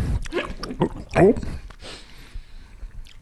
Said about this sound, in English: 1, 2, 3, go. It actually almost works. The worst chewing ever.